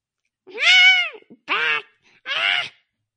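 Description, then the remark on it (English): A person imitates a flamingo call with three nasal, honking bursts, each under a second, rising and falling in pitch, with short pauses between them and no other talking. “I think there's a flamingo in the room behind me. I'm going to look around. Oh, wait. That was you.”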